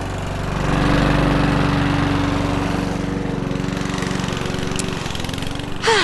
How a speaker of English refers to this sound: Now, I know you didn't tune in to hear someone mowing their lawn, because that would be a different podcast altogether, wouldn't it? What I have started to do is mow the Corona wildflower meadow of hope back, because it's the end of the season